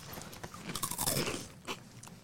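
Crisp crunching of rolled tortilla chips being chewed, several bursts of brittle snapping in quick succession with no talking.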